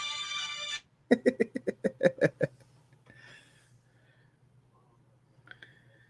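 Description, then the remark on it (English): After a brief hiss of noise, a phone ringtone plays a quick run of rhythmic, evenly spaced tonal pulses at moderate volume, then cuts off, leaving near silence with a few faint blips. “and there's a phone that's ringing.”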